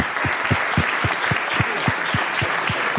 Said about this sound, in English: Ladies and gentlemen, please, a round of applause for our panel.